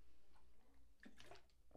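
A short sip and swallow of water, a brief wet slurp and gulp with faint liquid movement, heard alone with no talking.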